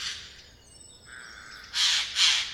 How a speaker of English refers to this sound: Try to focus in on one or two bird calls.